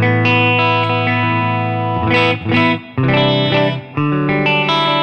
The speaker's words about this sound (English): So this first one is a Fender Deluxe, just on the normal channel with a springy reverb. And let's see, I'm currently on, this is the legacy cabinet.